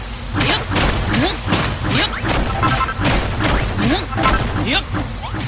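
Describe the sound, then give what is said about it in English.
Blocks being smashed in a video game that took Minecraft's building and block smashing, a dense run of crunching, cracking impacts in quick irregular succession, loud and close, with a busy rumbling clatter filling the gaps between hits. “And all the smashing blocks.”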